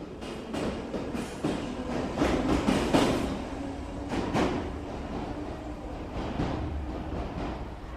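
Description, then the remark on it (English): A train rolls into a station and arrives at a platform, its steady rumble broken by repeated clanks and clicks from the wheels and cars, loud with no voices. “he was glad when he finally reached a platform at which his train would arrive.”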